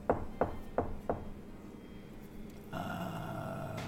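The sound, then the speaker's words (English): Four sharp, evenly spaced knocks on a wooden door, followed by a short pause and then a steady, low humming drone that continues to the end. “But right now, there's a knock at the door.”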